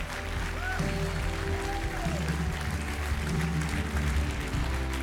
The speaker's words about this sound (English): Would you give the Lord a clap offering?